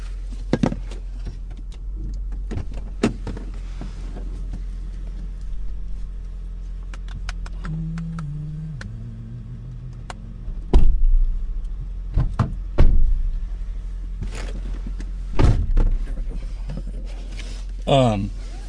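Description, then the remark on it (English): Low road rumble inside a moving car, broken by several sharp knocks and rattles from the car's rear door, coming every few seconds. “Is that my door? I don't think so. Maybe it's the rear door.”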